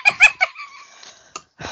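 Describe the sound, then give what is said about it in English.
A voice imitates a goose honk: three quick, bright, nasal honking bursts followed by a drawn-out wavering squawk, then a short clipped note and a softer breathy sound. “I've now just now got a goose witch stuck in my head because I am a goose witch and I'm like, honk.”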